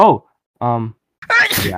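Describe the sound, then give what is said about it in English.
A single sharp, breathy sneeze bursts out, loud and noisy, following a couple of short spoken syllables. “Bless you. Bless you.”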